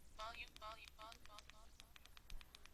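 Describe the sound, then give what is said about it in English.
A brief stretch of voice gives way to a quick series of soft, faint phone keypad clicks as the phone's volume is turned all the way down, about half a dozen small ticks in an uneven rhythm, quiet. “And you can hear the key clicking, but you don't hear anything.”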